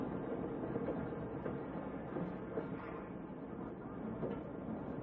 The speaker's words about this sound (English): Tonight's file opens outside the small shack that serves as the railroad station in a Midwestern farming town. A lone man stands on the platform watching the noon train from the city arrive.